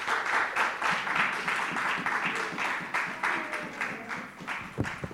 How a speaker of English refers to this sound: Give the Lord a clap.